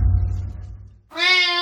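cat meowing

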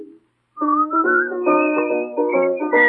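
man whistling a tune

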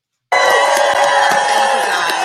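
crowd applauding and cheering

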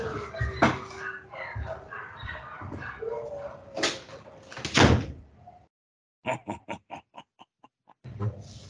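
dogs barking and whimpering

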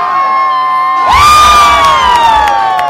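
crowd cheering loudly

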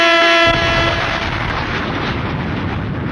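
air horn sound effect

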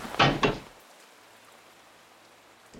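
door being opened

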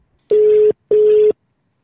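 phone call ringing tone

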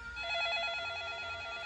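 telephone ringing

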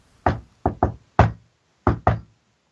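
knocking on a wall

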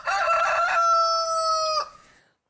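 rooster crowing

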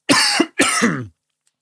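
cough

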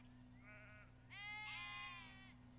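sheep bleating

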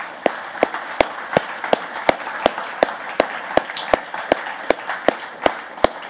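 audience applause

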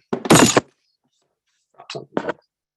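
glass breaking

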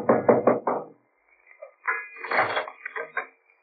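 knocking on a door

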